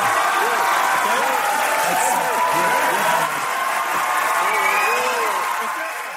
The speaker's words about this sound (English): I was going to end there with that very satisfying cheer